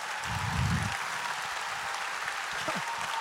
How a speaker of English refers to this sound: Oh, come on, you can clap better now.